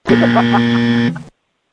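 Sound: buzzer sound effect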